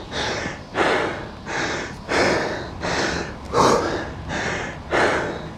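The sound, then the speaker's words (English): Heavy, labored breathing, with loud rhythmic inhales and exhales coming fast, about seven breaths in under six seconds, as someone pants to recover between sets of arm exercises during a workout. “My breathing is getting a lot harder to catch.”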